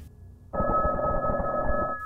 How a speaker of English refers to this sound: A phone. Old school bell? Loud enough to squeeze through the brick walls.